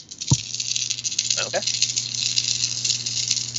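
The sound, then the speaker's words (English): Six dice rattle continuously for several seconds, a busy clatter as they're shaken and tumbled for a fight roll, opening with a sharp knock and carried over a steady low hum. “So I get to add my karate? Yeah. Yeah. Okay. So that is 6 dice.”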